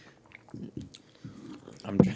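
Close, intimate mouth noises of someone sipping hot coffee directly into a microphone: a few short wet slurps and swallows, with a louder gulp near the end, quiet and alone.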